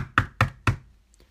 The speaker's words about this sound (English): We were just about to go, and I heard a knock.